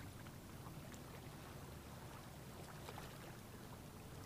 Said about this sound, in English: Hearing the ocean waves crash on the shore and recede out. Feeling your body in rhythm with the ocean wave. Raising your gaze to look at the waves and out to the horizon